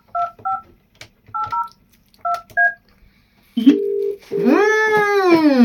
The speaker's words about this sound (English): Do you want that phone number, do you? I'll ring it. Let's phone it.